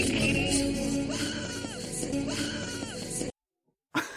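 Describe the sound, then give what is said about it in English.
Loud, sustained screaming from a strained voice in background voice acting, over a dense, busy background, cutting off abruptly into near silence before the noise bursts back in at the very end. “Like, oh my god, that scream's pretty like how did that make you know, was that, do you think that scream was on the afternoon airing”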